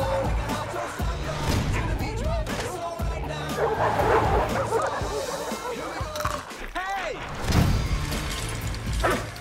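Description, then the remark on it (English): A pack of dogs barks and yips in a loud, overlapping chorus that never lets up, high excited yelps mixed with deeper barks, chaotic throughout. “We're outdogged.”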